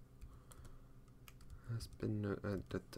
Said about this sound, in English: This is a lot of typing to do on the fly.